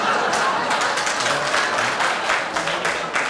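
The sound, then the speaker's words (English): A dense, steady wash of crowd noise from onlookers gathering on a weekday: many voices murmuring together with scattered clapping, loud and unbroken for a few seconds, no single voice standing out. “You know, you're drawing a hell of a crowd for a weekday.”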